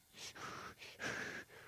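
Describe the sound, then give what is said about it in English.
A person takes a deep, deliberate breath as a breathing technique: a quick inhale, a longer airy exhale, then another short intake and a strong, drawn-out breath out. No talking. “Will special breathing techniques neutralize it?”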